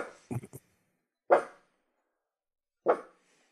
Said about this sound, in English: It's not all the way to being a woof, that is it? It's more of a boof. Yeah, it's a noise. Not exactly sure what kind of a noise it is, but it's definitely a noise.